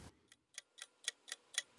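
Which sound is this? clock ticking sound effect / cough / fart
clock ticking sound effect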